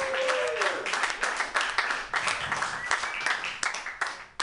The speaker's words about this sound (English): Round of applause for homeless people if you guys like it in here.